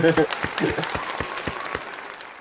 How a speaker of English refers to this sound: I'm going to give you a round of applause for mentioning it. Well done.